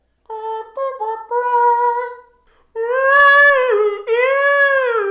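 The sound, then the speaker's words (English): A harmonica, presented as the 'Whalemonica', plays a few steady, reedy notes, then shifts into long swooping, wavering moans that rise and fall like whale calls, loud with no talking. “This harmonica will allow you to talk to marine mammals. Simply adjust the side knob for species and play. Playing will convert your speech to whale speak.”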